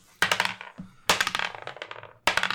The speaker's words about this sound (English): Grab the dice, let's roll initiative.